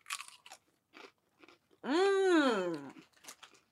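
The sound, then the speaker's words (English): Crisp crunching of an elote-flavoured corn chip being chewed in several short bursts, followed by a long, rising-and-falling appreciative hum from the eater before a few more soft chews. “I'm excited to try this, though, this elote corn chip.”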